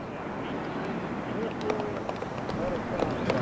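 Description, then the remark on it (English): Polite, scattered golf clapping for a golfer's tee shot starts about halfway through: a sparse patter of light claps over a steady hum of crowd murmur and faint voices. “Golf clap. He got a golf clap.”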